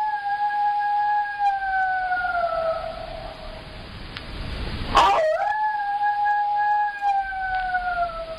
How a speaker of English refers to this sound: Be specific. What do you think that is? Is it a wolf? A wolf? Yes. Congratulations, you're right.